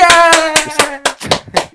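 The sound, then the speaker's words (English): About seven sharp, comedic hand claps in a quick, fairly steady rhythm, loud and crisp, with a sustained harmonic tone humming underneath the first several claps before fading out. “I've been like comedically clapping all day and my arms hurt now.”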